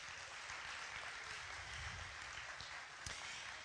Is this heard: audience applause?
yes